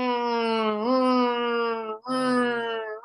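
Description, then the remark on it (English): A voice imitates a cyclone alarm siren with a loud, sustained wail, marking a predicted round 1 upset of LSU by Iowa State in a tournament bracket. The pitch holds steady, rises slightly, breaks for a brief breath, then the wail continues. “LSU, Iowa State, sound the cyclone alarm. Sound it.”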